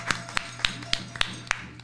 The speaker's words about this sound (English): Let's give another hand clap of praise for the Ma'at